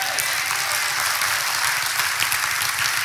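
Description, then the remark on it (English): An audience claps steadily for about three seconds, a dense, even wash of many hands with no voices over it. “Listen, let's agree you don't clap.”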